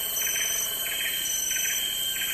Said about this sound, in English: Birds. And that brr, brr. What's that? Also a bird. A bird, and then a tropical frog.